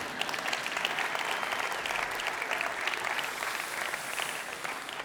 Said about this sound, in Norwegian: Du har lyst til å klappe en gang til, så klink til. Kom an.